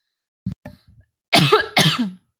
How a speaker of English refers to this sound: Excuse me, I was trying to mute myself so I could cough, and then I missed.